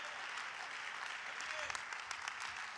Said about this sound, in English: Well, let's clap our hands all across this house.